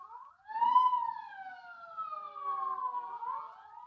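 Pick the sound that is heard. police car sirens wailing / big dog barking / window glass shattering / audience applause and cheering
police car sirens wailing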